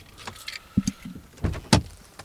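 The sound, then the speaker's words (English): Someone climbs out of a parked car: a few clicks and dull thumps of the door and handle mixed with brief shuffling movement, with no one speaking. “Pull in. I should get out of my car. That's what I'll do.”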